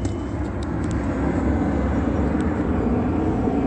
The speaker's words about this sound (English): the group stalker that is using a commercial airline plane right now is Southwest Airlines, that is hovering over the B&G Plaza and not hovering over Stater Brothers.